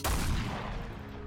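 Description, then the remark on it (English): A single heavy cannon blast with a sharp, loud onset, followed by a rumbling low-end decay that lingers for about a second. No voices are present. “No, you somehow dodged out of the way of the cannon fire.”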